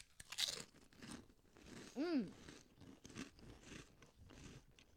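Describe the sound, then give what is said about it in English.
Loud, dry crunching of chips from a bowl being bitten and chewed, a sharp burst early on followed by irregular crackly crunches, with a brief hummed "mmm" partway through. “Did you get some? I got 2 chips.”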